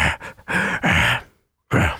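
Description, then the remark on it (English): A person imitates a man's weird, heavy, raspy breathing: a quick run of loud, gasping breaths, then a brief pause before one more harsh exhale. “He just came in and he was just covered in oil and he was barefoot and he had his dog with him and he just breathed like this.”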